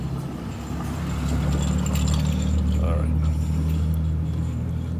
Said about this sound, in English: It's really, really hot in the car. In the van while I'm doing this. So while these cars go by, I'll roll the window down. Cool off a second.